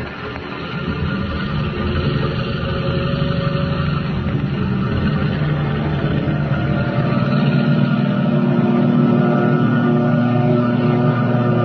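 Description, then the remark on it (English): A loud, steady seaplane engine roar runs throughout as the plane takes off from the water into the darkness, headed for the open ocean, dense and droning, building slightly in strength toward the end with a low, sustained hum beneath it and no voices. “Rising from the water like some monstrous seabird, the plane roars into the darkness, headed for the open ocean.”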